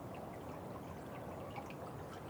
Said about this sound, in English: Suddenly, you feel water. And you understand that you have found a small stream.